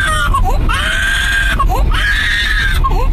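A baby screams close-up in a car, two long piercing wails broken by short gasping breaths and whimpers, over a steady low engine rumble.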